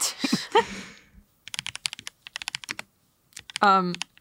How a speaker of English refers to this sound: I put in a little Gengar keycap. Stands up a little bit. You know, let me hit the audience with a little typing test.